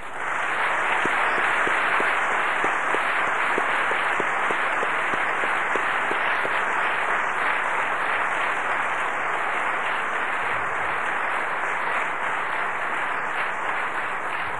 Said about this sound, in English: So if you'd all please stand. A round of applause, please, for as dear a friend as comics has ever had, Mr. Don Thompson.